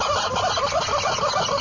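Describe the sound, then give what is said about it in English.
A rubber chicken toy, played with by a horse, lets out a loud, continuous squawking squeal, harsh and unbroken from start to finish, with no voices. “That's a video the other Josh sent me of a horse playing with a rubber chicken.”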